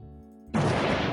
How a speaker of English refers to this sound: Nerdstalgic sets off an explosive, killing Chat Tsunami, Between Two Gamers, and Talking Smack. That's a big hit. Joey, I need four cannon shots, please.